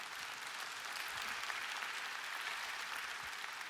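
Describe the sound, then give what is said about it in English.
An audience claps steadily, a dense, even patter of many hands that holds at a constant level for a few seconds without talk or cheering on top. “That's a weird truth to get a clap on, by the way.”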